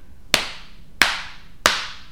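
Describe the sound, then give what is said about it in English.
Three slow, deliberate hand claps to turn a clap-activated lamp back on, evenly spaced about two-thirds of a second apart, each sharp and crisp with a short ringing tail, and no talking in between. “Clap three times. You gotta do it slowly.”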